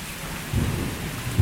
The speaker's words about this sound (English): Verse 25, though the rain comes in torrents.